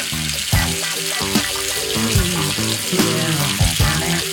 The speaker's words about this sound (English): Check that sizzle.